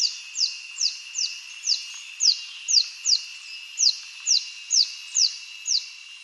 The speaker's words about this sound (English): I just mentioned the orange-tufted spider hunter. Here's one calling in the Philippines.